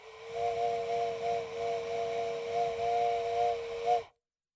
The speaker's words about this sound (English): Look, let's combine the two. Blow a halfway whistle.